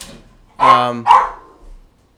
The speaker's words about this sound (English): They were barking at each other because Curly had some food and Optimus wanted it, and they were just pains.